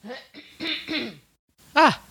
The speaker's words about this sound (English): Hold on. I have a frog in my throat. Hold on. Please. Cough break.